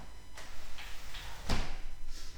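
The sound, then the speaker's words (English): A door is pushed shut with one solid thud, preceded by a few soft scraping and swishing movements. No one speaks. “I'm gonna quickly shut this door because this dog is so annoying.”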